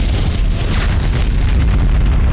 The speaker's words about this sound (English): A few moments ago, the relatively quiet night was shattered by a brilliant flash of light on the other side of the hill, followed by an enormous explosion.